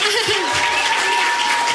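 An audience claps steadily to welcome comedian Matt Kirshen to the stage, a dense, even wash of applause filling the whole stretch, with a few voices calling out briefly underneath.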